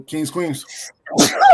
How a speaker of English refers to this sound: Bless you.